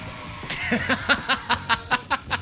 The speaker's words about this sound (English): Nah. Nah. That's just screaming. Yeah, literally.